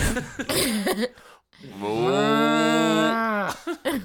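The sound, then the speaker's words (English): A person does a long, drawn-out moo imitation, a steady low harmonic tone held for over a second, preceded by brief bits of vocal noise and a short pause. “He's a cow with a mustache.”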